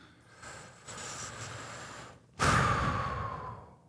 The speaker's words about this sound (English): Breathing hard.